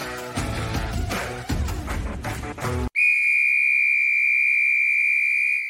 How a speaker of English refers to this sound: There's the whistle.